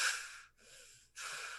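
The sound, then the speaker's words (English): Sharp, hissing breaths forced through clenched teeth: a loud rush of air, a softer breath in between, then another harsh hiss, like someone seething with anger. No talking. “So angry, you're breathing through your teeth.”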